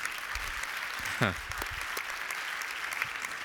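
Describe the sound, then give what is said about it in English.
An audience applauds for Christmas, in 2020, with steady, dense clapping that holds at an even level throughout, and a single voice briefly calls out partway through. “Come on, we can clap for Christmas.”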